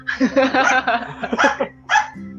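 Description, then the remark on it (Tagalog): A dog barks in a quick, uneven series of sharp, loud yaps, then lets out one more bark after a brief pause, over a low steady hum. “Ay, ingay din ng aso dito, nakakalong.”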